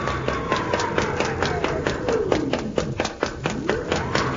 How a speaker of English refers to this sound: Hey, now the door's swinging open again. It is automatic. You don't have to worry.